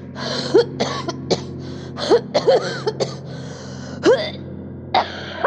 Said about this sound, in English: He held my hair as I coughed, tucked it behind my newly formed ears as I cleared the thick mucus from my body.